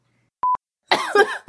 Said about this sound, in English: He's not so in pain. I am. Coughing hurts. I had surgery. I'm missing an organ.